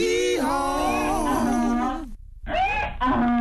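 A donkey brays loudly, a long harsh wavering bray that breaks off, then two shorter rasping hee-haw bursts follow after a brief pause.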